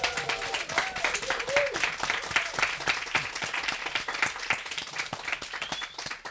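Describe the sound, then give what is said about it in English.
A crowd at Stam & Bar Café, during the hyfer knowledge festival, applauds loudly and steadily, dense overlapping claps mixed with cheers and a few whoops rising above the noise, sustained throughout without any talking. “And today we are in Stam & Bar Café, and I'm not alone and I'm not just with my guests, but we have a big crowd here. So bring it up, everyone. Make some noise.”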